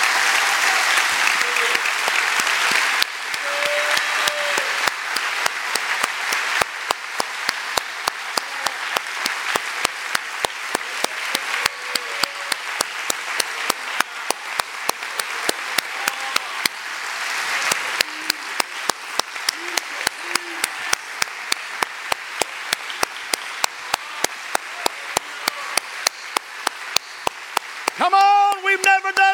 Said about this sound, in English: I would appreciate it not to give me a hand clap, but to give the leader of this church a hand clap of praise right now.